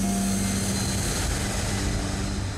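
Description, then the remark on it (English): A loud, steady roar of an Air Force C-17 cargo plane's engines in flight out of Afghanistan, heard from inside the back with about 250 people aboard, a constant droning rumble with a low hum underneath, with no voices. “the same way that tens of thousands of folks had left before me in the back of another C-17 cargo plane.”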